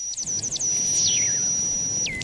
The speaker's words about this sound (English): Of course, we're hearing beeping and booping before any sound actually starts. Yeah, after the R2-D2 stuff, I promise there's Animal Crossing stuff.